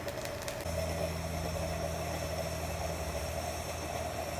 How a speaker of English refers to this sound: So there you see the coffee starting to pour in. It does make a little bit of a sound, and then you can, that's just for you to hear that the coffee is going through. It does come through a little bit bubbly.